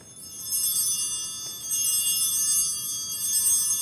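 Hand bells, rung three times as for the holding up of the host in a Eucharistic service, ring out in three bright, shimmering bursts, each a sustained high metallic jingle running almost into the next, with no voices.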